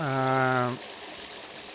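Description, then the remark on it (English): Water of a little stream in the Suffolk countryside at Rosemary's Bridge rushes steadily around a person's feet on a sunny afternoon, a constant hiss of flow. A short voiced hum sits over it at the start, then the water carries on alone. “And that, I've got my feet in the water here.”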